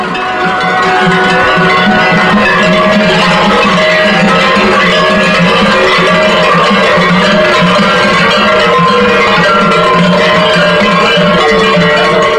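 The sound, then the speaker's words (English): A dense, loud clamor of many large cowbell-like bells clanging together without pause, their metallic tones overlapping in a steady jangling rhythm for the whole stretch, with no voices. The bells are rung by Kukuris, men in goat hair costumes and painted cloth masks, as they dance and parade through town. “They dance and ring bells as they parade through town.”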